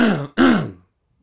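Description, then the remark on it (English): Someone clears their throat twice in quick succession, a loud, voiced rasp with a short break between the two bursts, followed by silence. “Something in my throat. We need water.”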